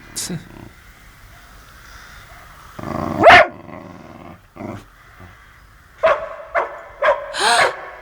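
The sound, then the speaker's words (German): A dog barks several times in a loud series of sharp barks, with a low growl between them and a quieter rumble before the first bark. “Habt ihr das gehört? Das ist doch nicht möglich. Das ist Wuff.”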